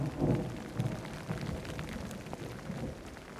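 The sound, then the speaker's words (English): Steady heavy rain of a summer evening thunderstorm (yudachi) in Japan hisses across the whole stretch, with low rumbling bursts of thunder rolling underneath. No voices, just the continuous wash of a downpour. “This sudden downpour helps give a feeling of refreshment and usher in a sense of evening cool.”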